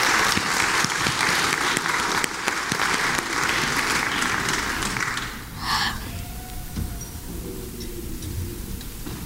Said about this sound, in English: Thanks, guys. Can we just get one more round of applause just for that?